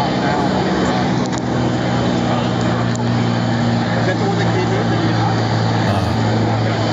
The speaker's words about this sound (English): Always good to hear the airplanes in the background.